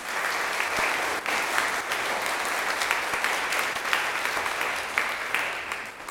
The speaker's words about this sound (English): So great. So clap for both of them.